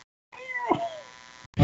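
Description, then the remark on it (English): A male kitten gives a single drawn-out meow, fairly clear, its pitch sliding downward over about a second, followed by a brief loud burst of noise at the end. “why don't you ask your kitten to give us a rundown of Project Metal Beast?”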